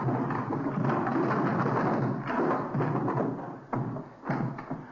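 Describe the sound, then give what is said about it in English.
Heavy barrels are shoved over and tumble with a loud, continuous rolling rumble, ending in a couple of sharp thuds as they crash down. No one speaks. “Help me push these barrels over.”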